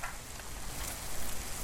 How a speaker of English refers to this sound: It's raining in a backyard in northeast Portland.